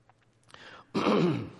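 A raspy throat clearing by a person getting over a cold: a short soft rasp, then a louder, harsher burst that holds for about half a second. No one speaks.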